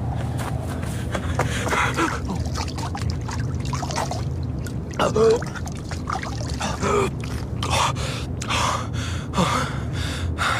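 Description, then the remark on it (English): Water pours and trickles in a steady, splashy wash, with irregular louder gushes and a low rumbling undertone, continuous throughout. “Water.”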